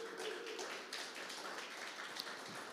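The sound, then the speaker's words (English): Steady, dense audience applause from many hands, a continuous crackling wash of claps sustained at an even level for about three seconds, with no one talking. “Can we give Denise a warm round of applause?”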